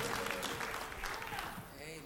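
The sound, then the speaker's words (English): An audience claps hands in a dense, steady patter of overlapping claps, with murmuring voices mixed underneath throughout, during a morning worship service, clapping to give God glory. “Come on and clap your hands, give God glory in this place.”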